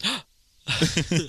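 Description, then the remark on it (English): A voice imitates a sharp, surprised gasp as a meme: a short breathy vocal burst, then a brief pause and a longer, more voiced exclamation with several rising pulses, loud. “And that's Gasp.”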